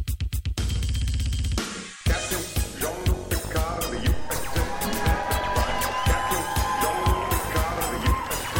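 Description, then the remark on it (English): A short musical burst gives way to a loud live audience in San Francisco cheering, whooping and shouting catcalls, a dense, sustained roar of many voices. “Please limit your sexual catcalls to Adam only.”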